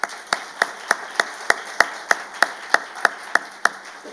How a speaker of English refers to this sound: Can we give them a round of applause, actually?